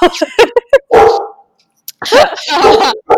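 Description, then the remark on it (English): A dog barks loudly, a run of sharp quick yaps followed by longer, harsher bursts after a short pause, with no one else talking, as a UPS delivery man drops something off at the house. “And my dog is barking now.”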